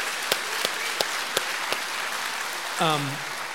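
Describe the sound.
A church service audience applauds steadily for two guests who shared their stories, a dense wash of clapping with a few sharper individual claps standing out, before a single voice briefly speaks near the end.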